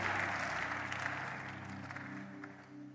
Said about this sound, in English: Come and clap your hands and scream.